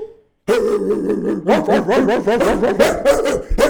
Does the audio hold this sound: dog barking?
yes